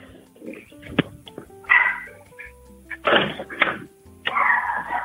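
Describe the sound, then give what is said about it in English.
A dog barks several times in loud, irregular bursts, with sharp clacks and short pauses between them and no one talking. “Like, is there a place that you could talk with where the dog is not there?”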